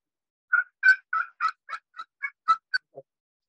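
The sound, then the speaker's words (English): Turkey cutting played on a Timber Freak slate call: about ten sharp, loud clucks fired off in a quick, uneven burst, alone, ending on a softer, lower note. “So what about cutting?”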